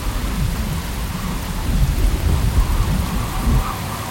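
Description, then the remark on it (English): Heavy rain pours steadily while deep thunder rumbles low and continuous underneath, swelling loud through the middle, with no voices present. “I held onto that tree until the winds died down and the rain stopped.”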